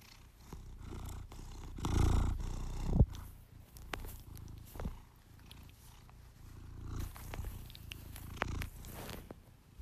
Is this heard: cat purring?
yes